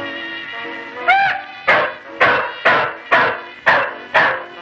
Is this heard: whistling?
no